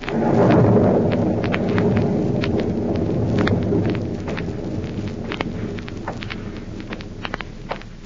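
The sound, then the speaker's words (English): On a stormy night at an old house hideout in Illinois, a rumbling roll of thunder swells early and slowly fades beneath steady, hissing rain, with scattered sharp drips and patters continuing throughout; no voices. “An eerie, stormy night at the former hideout of Professor Horn in Illinois.”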